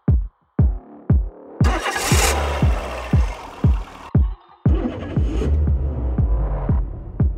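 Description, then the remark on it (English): A car engine starts, with a rapid series of heavy rhythmic cranking thumps before it catches into a loud, rough roar that briefly cuts out and then resumes. “Her car would start for a while, and then she would quickly tap the brake.”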